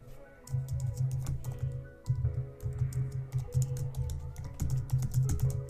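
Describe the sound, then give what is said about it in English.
Rapid, irregular clicking of keys on a computer keyboard, steady throughout, over a low constant hum with no voices. “I'm typing this away.”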